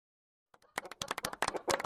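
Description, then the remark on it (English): A burst of applause from a small group starts after half a second of silence, quickly building into dense, crackling claps that stay fairly loud to the end, with no voices. “those chickens are applauding.”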